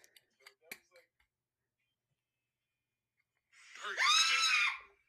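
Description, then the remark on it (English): A few faint clicks and taps, then a pause, then one loud, sustained shriek of a person screaming, lasting just over a second, piercing before it cuts off. The person screams in fright while wearing a VR headset, as an animatronic fox kills them in the game. “There's a clip of me screaming.”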